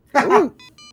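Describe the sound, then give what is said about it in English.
A phone rings with short, rapid electronic trills in quick repeated bursts, moderately quiet, coming right after a brief loud vocal sound. “Hold on, you guys. I'm getting a phone call.”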